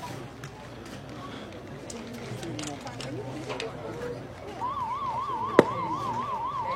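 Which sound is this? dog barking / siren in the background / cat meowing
siren in the background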